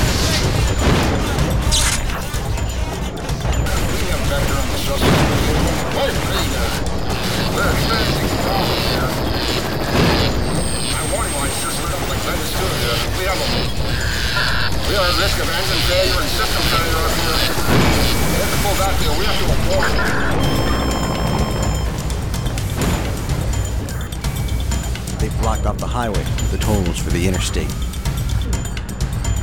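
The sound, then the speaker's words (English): A loud, chaotic car chase in which five cars have been taken out: repeated smashing crashes and booming impacts over constant engine and mechanical clatter, dense throughout, with voices intermittently under the din. “That's 5 cars taken out now.”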